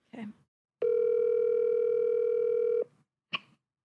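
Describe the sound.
A steady electronic telephone tone holds for about two seconds as a call is placed on speakerphone, a flat hum with bright harmonics, bracketed by brief bursts of voice before and after.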